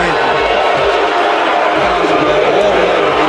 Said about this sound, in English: So just know this, the booing is because the Dallas Cowboys were just announced to have been on the clock. It is not in response to the language that we just heard.